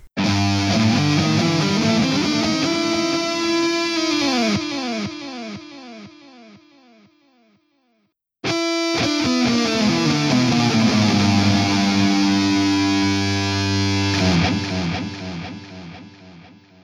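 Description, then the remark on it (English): A loud, dense stretch of weird funky porn-style music with warped, sweeping synth tones; it fades to a brief silence, then bursts back in at full volume. No one speaks. “there's a lot of weird porn music in Supernatural's, like, normal soundtrack, so this there, will be appropriate”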